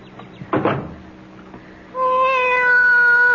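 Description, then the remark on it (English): A brief clatter, then a cat lets out a long, sustained meow, loud and steady until the end. No one speaks. “Be quiet, cat.”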